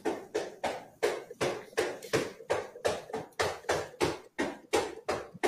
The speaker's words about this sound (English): there's three sets of knocks in there. One, he goes to the back door.